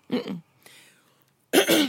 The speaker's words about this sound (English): And I just had to clear my throat.